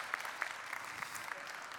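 An audience claps steadily, a dense patter of many hands with a few sharper claps standing out, heard from a moderate distance at fairly low volume.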